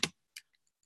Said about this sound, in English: Ooh, why am I typing it in the chat there?